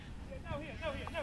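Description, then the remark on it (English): Sheep bleat in short, wavering calls, a few overlapping in quick succession, over a steady low outdoor rumble, as a farmer with sheepdogs rounds them up and pushes them toward a gate. “And there's a farmer on the other side who has his sheepdogs and he's rounding up the sheep trying to push them through the gate.”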